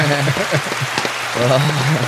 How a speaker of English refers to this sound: Yeah, can we get that? That's the perfect time for a round of applause.